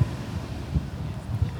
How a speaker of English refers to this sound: It's gone a bit breezy. It's not thunder. Well, it's a bit windy.